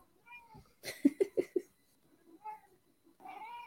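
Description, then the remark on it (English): Kira, a cat who has just woken up, meows several times, short rising and falling calls spread across a few seconds, with a quick burst of choppy, rhythmic sounds between them. “Oh, Kira just woke up and she agrees that it doesn't make any sense.”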